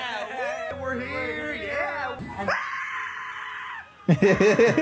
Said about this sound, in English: Yeah, we're here. Cutting straight to the screaming.